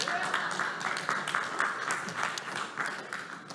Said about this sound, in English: Come on up to the stage. Come on. Oh, you cheer for them. You haven't clapped for me one time.